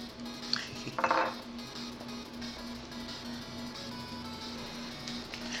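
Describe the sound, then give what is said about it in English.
Cups clink together a couple of times early on, short bright knocks of crockery while coffee is being made, followed by a steady low electrical hum with no voices. “She's off camera getting her coffee ready.”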